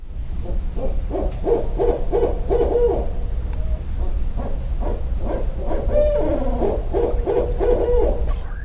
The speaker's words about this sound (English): Is it a barred? That's sure. Barred owl. Is all that right. A barred owl? Barred owl. All yeah. Right. That's the consensus of our expert. It was a barred owl.